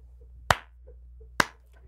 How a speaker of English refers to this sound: Slow clap Anna Navarro.